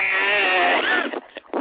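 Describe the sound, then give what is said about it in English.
Right after a spoken countdown from five to one, a loud, buzzy electronic buzzer blares steadily for about a second, then breaks into a few short choppy bursts before cutting off. No one talks over it. “That's the buzzer noise.”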